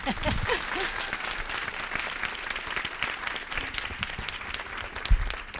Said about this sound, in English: So I would ask you to please clap loudly, and I'll hold the microphone high.